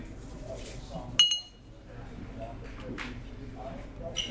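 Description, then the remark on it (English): While a bartender makes a Pendennis Old Fashioned cocktail, a cherry drops into an old-fashioned glass with one sharp, ringing clink, followed later by a fainter tap, over a low murmur of voices in the background. “Cherry in each glass.”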